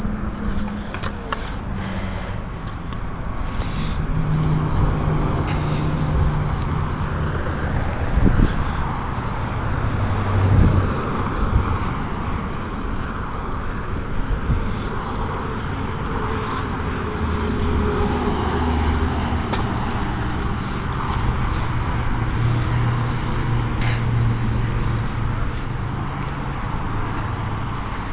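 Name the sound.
freeway traffic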